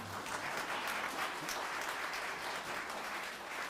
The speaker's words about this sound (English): Someone wanted to clap over there, and I would agree 100%. Thank you.